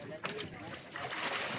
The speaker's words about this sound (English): So this is what it looks like when a school of piranhas starts going bananas and you're standing next to the water.